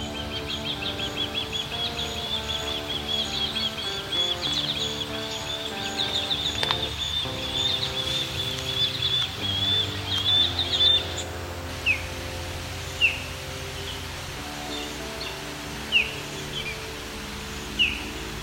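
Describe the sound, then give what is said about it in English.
Osprey and over a dozen other wild bird species call along the Grand River at Rim Park in Waterloo, Ontario, over a steady low rumble: a run of rapid, high whistled chirps, then sharper single cries every few seconds. No one speaks. “We're going to hear these osprey as well as over a dozen other bird species.”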